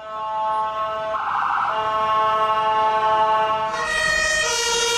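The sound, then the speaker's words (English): A European emergency vehicle siren, the sound used by police cars and ambulances, sounds loudly and continuously, its steady harmonic tones shifting in pitch partway through, with no one talking over it. “That's the European sound. So they were talking about changing down of police cars, ambulances, and all emergency vehicles.”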